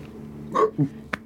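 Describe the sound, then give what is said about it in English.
A short, sharp vocal hiccup jumps out near the middle, followed by a smaller gulping catch and a quick click, moderately loud. “Get the hiccups from over there.”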